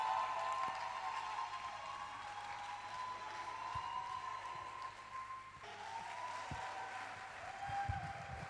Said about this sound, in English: If that hand clap was for me, I think you can do better for Jesus, right?